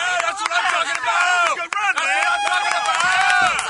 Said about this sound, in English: Oh, the guys are back cheering. Oh, there they go. Rowdy bunch. It is a rowdy bunch.